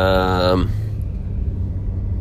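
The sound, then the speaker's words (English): A steady, low road rumble from a car driving along, continuous, with a brief voice sounding over it at the very start. “Well, we're back on the road. This is the scene.”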